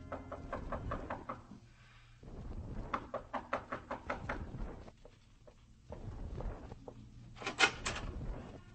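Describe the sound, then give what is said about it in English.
Police repeatedly knock on the wooden door of a room in a tenement on 110th, in bursts of sharp raps, with shuffling and a low background rumble between the sets of knocks. “You bring yourself to the wrong door, senor police. Go skin your knuckles in another place.”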